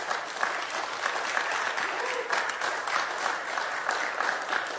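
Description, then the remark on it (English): An audience at a pale ale tasting gives the presenter a round of applause, a dense, even wash of many hands clapping steadily for several seconds with no pauses or spoken words, holding a fairly constant loudness throughout. “And let's give David a round of applause.”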